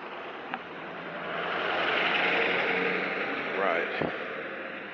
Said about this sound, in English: Letting their keys in their trucks, letting them run, standing 10 feet away. Air smells so bad from the pollution. So why don't you turn that thing off? It's like I smell it 20 feet down the road.